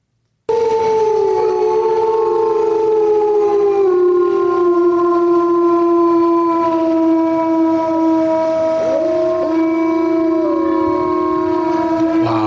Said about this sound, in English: So let's hear a wolf just for real quick, and then we'll go back. And I've got another comparison. Yeah. Okay, great. Perfect. Here's the wolf or wolves.